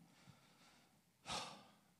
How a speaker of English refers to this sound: I'm getting too fat. I'm having problems breathing. No, I'm just kidding.